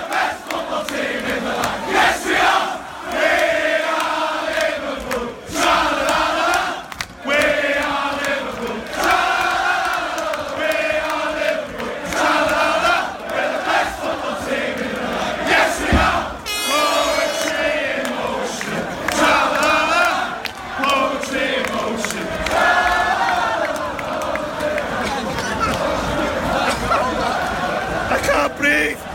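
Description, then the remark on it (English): A large crowd roars and chants continuously as the team bus comes in, driving through the people, a dense wall of shouting voices with rising and falling cheers that stay loud throughout, with no pause in the noise. “So there's the bus just coming in. It's literally just the bus going through some people, but I loved it.”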